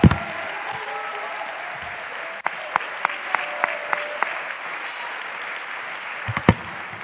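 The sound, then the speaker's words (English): A crowd at a church worship service claps steadily in a dense, sustained wash of applause, with a few sharper individual claps punctuating it in a loose rhythm before it tapers off. “You got a right to clap.”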